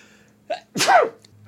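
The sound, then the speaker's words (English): A short, sharp human sneeze bursts out, preceded by a quick breathy intake and followed by the start of another, with no talking. “I'm going to sneeze.”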